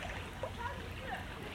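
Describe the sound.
Water churns and splashes steadily as someone swims, with a continuous low sloshing and faint indistinct voices underneath.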